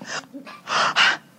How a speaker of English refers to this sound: Breathing heavy.